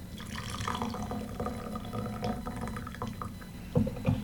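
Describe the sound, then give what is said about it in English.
A steady trickle of tea pouring into a cup, continuous, with a couple of soft clinks near the end and no talking. “I actually tried to pour out maybe around 50 seconds.”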